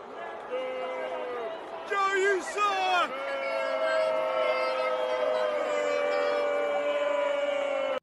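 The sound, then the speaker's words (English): A large crowd booing in a loud, sustained roar of overlapping voices, with a short burst of clapping or cheering mixed in partway through. “Yeah, that sounded like a whole bunch of boos to me.”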